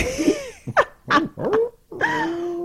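A dog growls and then lets out a string of short, sharp barks, ending in a longer drawn-out vocal sound. No one speaks.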